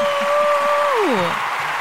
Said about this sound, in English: Also, we launched a website. Hey! Do some clapping on that. Yay! Yes.